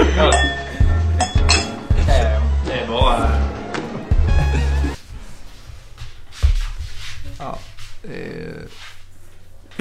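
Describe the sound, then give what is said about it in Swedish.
Glasses clink together several times in a quick, bright toast, with voices talking and some clatter of tableware around them. “Skål! Skål!”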